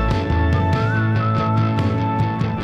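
A thin, wavering whistled melody floats over a full band arrangement with steady, regular drum hits, the whistle sitting moderately loud within the mix and no voices speaking.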